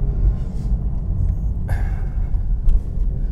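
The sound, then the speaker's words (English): Steady low road rumble from a car going downhill in third gear and slowing down, with a brief whooshing burst partway through as it passes through an enclosed underpass to get onto a freeway, no voices present. “Downhill, sharp grade, big, scary cliffs on one side, into 3rd gear, slowing down and coming through the underpass to get onto the freeway.”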